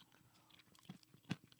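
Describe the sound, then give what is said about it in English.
Crunchy chewing of a peanut butter cup, with several irregular bites and one loud sharp crunch near the end, set against quiet background; no one speaks. “I like that it's still crunchy. The texture I'm a huge fan of.”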